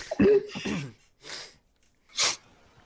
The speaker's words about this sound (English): So Lavias, Dain, and Nerali and Maeve are all, you know, sort of holding their breath and being quiet. In the tense silence, Fakir sneezes loudly, and Graza just sort of huffs